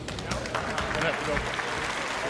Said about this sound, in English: Look how people applauded. People are applauding, but like in a confused, kind of reserved way. Yeah, some people were just like, what is the guy? I don't That guy doesn't work there. But we have to clap.